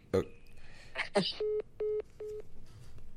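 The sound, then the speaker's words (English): A phone line clicks and rustles as the call is dropped, then three evenly spaced electronic beeps sound clearly, each steady and about half a second long, with brief gaps between them. “That was a real hang up.”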